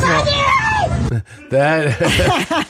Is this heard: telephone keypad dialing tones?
no